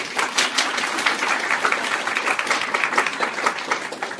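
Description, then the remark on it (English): An audience applauds to welcome Rabbi Lord Jonathan Sacks, a Yeshiva University faculty member, steadily with dense overlapping claps forming a sustained, even roar of fairly loud clapping that holds for several seconds without any speech. “Round of applause.”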